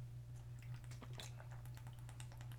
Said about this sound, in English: Water break. That's the sweet sound of us drinking water.